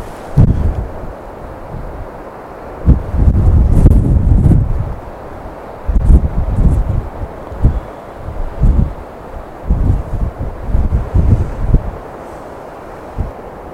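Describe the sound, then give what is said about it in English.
Strong wind buffets the microphone in heavy, irregular gusts, low rumbling bursts that rise and fall over several seconds with brief lulls between them, while a photographer waits for the wind to ease before pressing a camera shutter. No one speaks. “And then I'm going to wait for a period of time when the wind is not as severe to press the shutter.”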